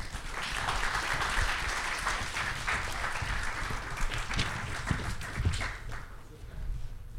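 Sustained audience applause, another round for three guest writers, a dense crackle of many hands clapping at a steady loudness for several seconds before thinning slightly at the end.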